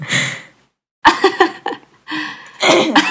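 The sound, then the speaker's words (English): A person gives several strong, throaty coughs in quick bursts, one harsh hack after another with short pauses between, loud, with no talking over them. “Oh, just do a strong cough.”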